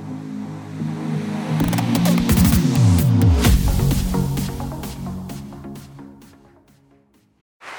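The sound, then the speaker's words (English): A sausage patty for a McDonald's breakfast sizzles with a dense, steady crackle and sharp pops, rising loud at first, then fading away, over a low tonal hum that could pass for a roaring crowd. “Is that America cheering or a sausage patty sizzling to perfection?”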